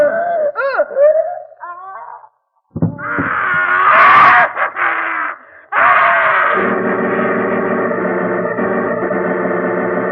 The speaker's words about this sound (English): That scream? Yes, I was in bed when it came. Positively ghastly, too. Seemed to come from Uncle Andrew's study.